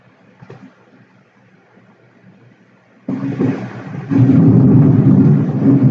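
A quiet, murky first half gives way to a sudden deep rumble of thunder that swells louder and rolls on heavily to the end, with no voices.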